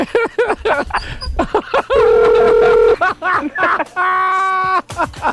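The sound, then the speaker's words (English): A telephone rings in two steady electronic bursts, each about a second long, with people talking before, between and after the rings. “My phone's still ringing.”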